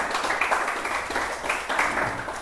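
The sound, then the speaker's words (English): A large group gives a hand clap to the Lord in steady, dense applause that holds at an even level for the whole stretch, a continuous wash of overlapping hand claps with no voices on top. “Give the Lord a hand clap for using his people.”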